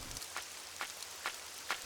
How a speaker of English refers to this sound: The rain was starting to become an issue, so the man began to move the wood onto the porch.